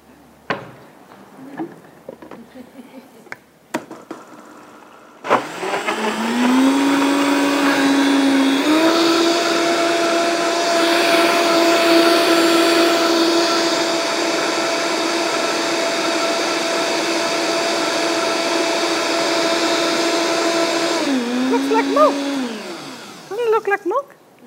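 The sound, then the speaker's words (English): A blender whirs steadily for about sixteen seconds, blending a banana with water into banana milk, its motor pitch climbing once early on and holding a loud, even drone before winding down, with a few clicks and knocks before and after. “Just take the banana, throw it in there with some water, and blend it all up.”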